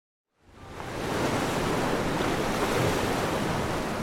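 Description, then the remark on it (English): Aegean Sea surf off the coast of Santorini rushes in after a moment of silence, swelling into a steady, full roar of breaking waves with a windy hiss, loud, with no voices. “Off the coast of Santorini, Superman hits the Aegean like a bullet, plunging himself deep into the depths of the sea.”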